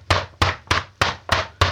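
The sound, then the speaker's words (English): A fist pounds on a closed wooden door gate, hammering with the side of the full fist: six heavy, evenly spaced thuds, roughly three per second, each a loud dull knock with a deep low body and a sharp attack. No voices. “A hammering, full fist, side of fist hammering.”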